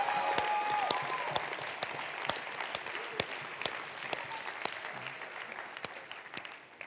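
audience applause and cheering

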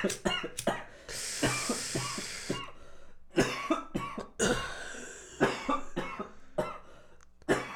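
coughing

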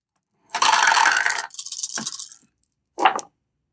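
dice being rolled

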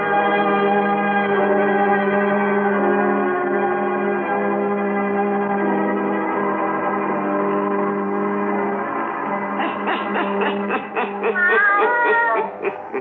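black cat meowing

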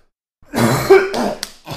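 coughing

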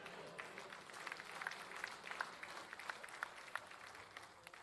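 sparse applause

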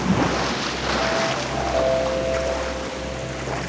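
ocean waves

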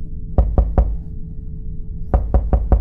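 knocking on a door

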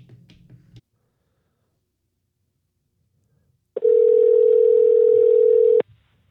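telephone call connecting

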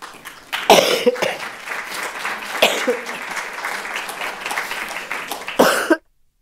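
coughing

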